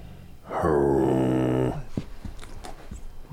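A watchdog named Pris gives a single drawn-out, rumbling growl of about a second, loud, at a microphone coming up on it, followed by a few soft, irregular thumps as its tail thumps along.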